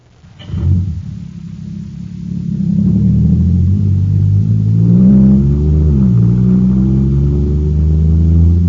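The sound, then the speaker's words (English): A supercharged jet cycle engine running on super fuel bursts into life with a sharp thump, then builds into a loud, steady roaring drone whose pitch climbs and wavers as it accelerates, continuous with no talking. “Wow, this jet cycle is supercharged now.”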